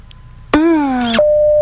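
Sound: telephone ringtone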